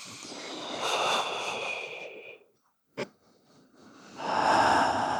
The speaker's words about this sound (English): So my favorite way of working with Respire, you can take a few drops into the hands, mm-hmm. rub the hands together, take a few deep inhalations. So you guys are going to breathe with us.